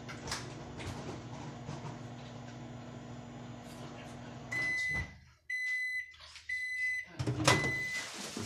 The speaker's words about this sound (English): That's how microwaves be.